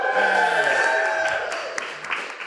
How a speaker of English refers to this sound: And of course, let's have a rousing cheer for We Fix Space Junk!